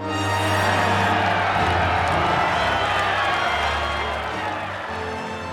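A crowd of about 1,000 people in a palace courtyard at sunset roars and cheers in a dense, sustained wash of voices for several seconds, loud, with a low steady hum running beneath it.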